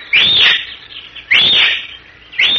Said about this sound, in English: Several minutes later, the same horseman, having traveled a secret trail beneath a rocky shelf of the mountain, dismounts in a tiny glade surrounded by boulders, stunted trees, and giant cactus. He whistles three times, shrilly.